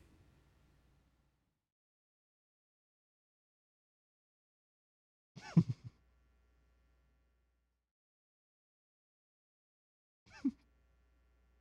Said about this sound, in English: This is great content. Why are you breathing? But I can't breathe during my moment of silence.